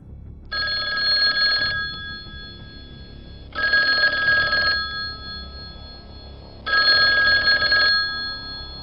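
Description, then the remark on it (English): A telephone rings three times in evenly spaced bursts, each about a second long with pauses between, loud over a low background hum. “And she's thinking about Chuck when the phone rings.”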